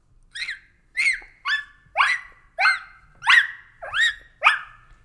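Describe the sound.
A female puppy practicing her big bark gives eight short, high-pitched barks in a steady rhythm, each a sharp yip about half a second apart, clear with no other sounds around them.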